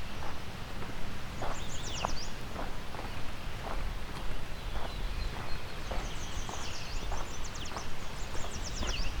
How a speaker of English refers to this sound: Now we're in a sandy meadow. Kind of environment I haven't really recorded in much. We've got some northern perula here.